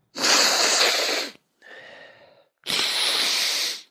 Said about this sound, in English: Sorry, I got to take my nasal spray real quick.